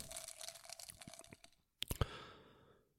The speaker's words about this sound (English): Why don't we pick up some of this glass before someone gets hurt? Physically. Yeah, listen to all that. Broken glass. I'm sure that does something for someone out there. You can hear my wedding ring clinking against the pieces.